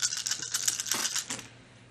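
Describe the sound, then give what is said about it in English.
A quick burst of hard clattering as several dice are rolled for a hacking check in a game, tumbling and knocking together on a tabletop, rattling for about a second and a half before settling into quiet. “If you're quick, go ahead and roll a hacking check. All right, lose one of these dice.”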